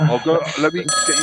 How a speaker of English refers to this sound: Well, look, your phone's ringing